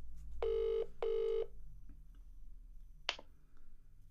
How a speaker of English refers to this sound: Here we go. Ringing him on WhatsApp.